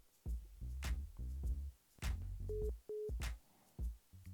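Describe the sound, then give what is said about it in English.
A phone line rings out on an outgoing call with a brief double burst of steady electronic tone, set among louder voice-like sounds and sharp bursts of noise around it. “Phone's ringing.”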